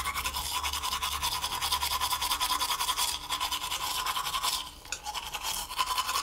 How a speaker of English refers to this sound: Took a shower, brushed his teeth,